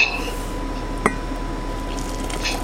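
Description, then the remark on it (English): Freshly boiled hot coffee pours steadily from a little copper pot with a soft continuous trickle, broken by a single sharp clink of metal or glass partway through. No one speaks. “I just boiled my coffee. oops. And then, here, let me pour this real quick so I don't make too big of a mess.”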